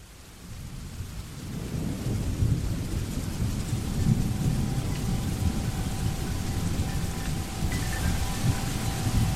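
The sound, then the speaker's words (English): Steady rain pours down without pause, swelling in the first couple of seconds and then holding constant, with a deep, rumbling low-end roar beneath the hiss. No voices. “It's raining again.”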